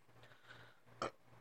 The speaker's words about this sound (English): Burping again, like God damn.